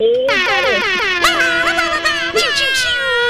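A loud, sustained air horn blares continuously for a few seconds, its brassy tone wavering slightly in pitch, alone with no one talking over it.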